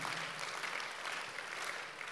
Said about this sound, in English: The Christians are clapping for Jesus.